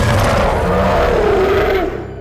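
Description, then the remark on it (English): A loud, deep roar from a giant wolf just freed from his chains, in snow, holding for about two seconds, its growling tone sliding slightly downward before trailing off, heard on its own. “roared with relief, shaking the useless links from his legs.”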